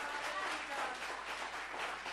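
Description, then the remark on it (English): An audience applauds steadily, a dense wash of many hands clapping that holds for a couple of seconds, fairly soft with no talking over it. “Come on, give a round of applause for those friends that are always there.”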